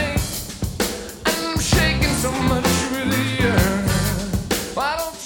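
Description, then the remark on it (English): A Purdie shuffle drum groove on a drum kit, its swung ghost-note hi-hat and snare pattern rolling steadily under a full band with bass and keys, loud, with no voices. “And what you hear right now is the Purdy Shuffle.”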